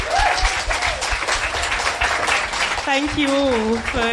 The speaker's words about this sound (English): Thank you, guys. Can we have a round of applause for our speakers?